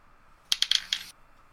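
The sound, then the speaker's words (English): Dice are rolled for a tabletop role-playing game check and clatter onto a hard surface: a sharp first hit followed by four or five quick, bright ticks that settle within about half a second, with no voices. “I'd like both of you to please roll me a wits and investigation.”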